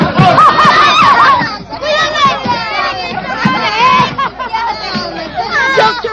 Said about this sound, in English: What's happening? They're all hitting each other with truncheons. Yeah, you can't do that. They're all going away. Oh, they're dragging each other out. Hey, come back here. Oh, terrible.